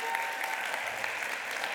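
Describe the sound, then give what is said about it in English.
Steady applause from a church audience welcoming a new staff member, a dense, even patter of many hands clapping at once, moderately loud and sustained without breaks or voices standing out. “Yeah, go ahead and clap. Go ahead and clap. Welcome her.”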